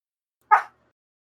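A single short dog bark rings out once, clear, with silence before and after it.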